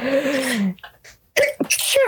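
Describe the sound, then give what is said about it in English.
A sharp, close sneeze bursts out, followed by a brief pause and a couple of quick, breathy vocal sounds. No words are spoken. “Gesundheit.”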